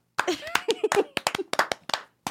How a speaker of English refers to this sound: Did you guys want to applaud or something?